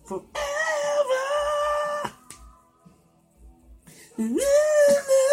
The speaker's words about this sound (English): Fucking dog.